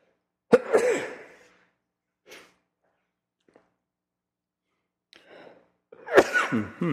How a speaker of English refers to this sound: And, excuse me, I'm going to sneeze here.